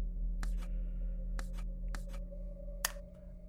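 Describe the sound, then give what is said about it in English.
A few sparse, irregular keyboard key taps, some in quick pairs, as letters are typed in, over a steady low electrical hum, with no talking. “So you're typing in the letters.”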